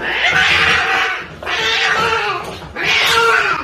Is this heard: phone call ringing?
no